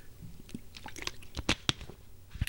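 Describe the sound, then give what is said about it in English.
Someone takes a swig of water, with a run of wet sipping, swallowing and mouth clicks at an irregular pace, fairly quiet, no talking. “Let me just get a swig of water here.”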